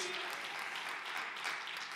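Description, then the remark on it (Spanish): A church audience applauding steadily in praise of Jesus, a dense wash of many hands clapping at an even, sustained level with no pauses, with no voices standing out over it. “Del pueblo, ese aplauso a mi rey con el corazón.”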